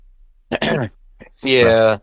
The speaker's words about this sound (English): Sorry, I ate some spicy chicken, so I'm like, that's why I'm clear my throat.